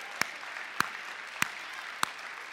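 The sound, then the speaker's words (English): An audience at a church service claps after a mission statement is read in Spanish: a steady, hissing wash of applause with a few sharp, louder single claps standing out at a regular rhythm, roughly every half second. No one speaks. “Some of you are clapping and you don't know Spanish, so you probably wouldn't be clapping.”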